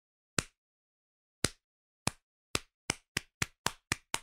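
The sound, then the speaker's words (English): A slow clap cheering for Sifu as the number one game of the year 2022: sharp, isolated hand claps that start with wide gaps and steadily quicken into a faster rhythm, about eleven claps in all, clear, with no talking. “A classic rom-com slow clap.”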